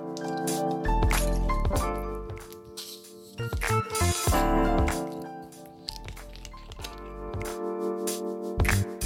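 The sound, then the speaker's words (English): Syrup and gin are measured out and poured into a glass with ice for a gin and tonic: liquid pouring and splashing, with soft clinks and knocks of a measure and bottle, a few short bursts of activity over a steady background. “Measure out the syrup that's been made. this along with the gin.”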